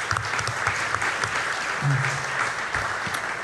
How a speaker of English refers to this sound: But thank you to everyone who helped out with this. Everyone behind the scenes, please give them a round of applause. Thank you.